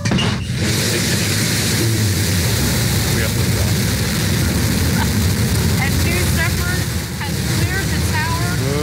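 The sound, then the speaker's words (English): The liftoff roar of Jeff Bezos's rocket going into space: a loud, steady, crackling low rumble that fills the full nine seconds without letting up, with faint voices rising above it toward the end. “Yeah, dude, here's the liftoff.”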